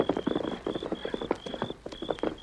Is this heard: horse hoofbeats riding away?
yes